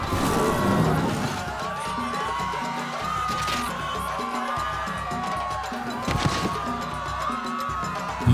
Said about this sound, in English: We hear deep, guttural roars from the buffalo and screams from the crowd of villagers and children as it commences to trample and gore them all to death.